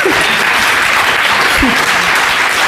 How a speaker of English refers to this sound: Yeah, you should clap. That's good news.